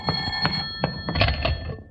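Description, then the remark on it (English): A telephone bell rings in quick metallic bursts, its bright sustained tones repeating with a faint rattle underneath, and no one speaking over it. “Will you get that phone, please, Mrs. Davis?”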